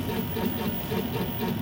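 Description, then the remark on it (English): A steady, constant mechanical hum with a low, engine-like drone, unbroken from start to finish, from the noisy machinery that keeps a habitat running. No one speaks. “It takes a lot of noisy machinery to keep the habitat running. You hear a constant hum.”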